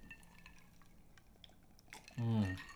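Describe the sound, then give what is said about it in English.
Soft clinks of glassware and faint liquid sounds as a group of friends toasts, takes one bite and one sip, followed by a loud voice vocalizing near the end. “One bite. One sip. Everybody Cheers.”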